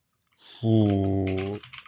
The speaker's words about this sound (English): Sorry for my mechanical keyboard. Oh, yeah, it's really loud.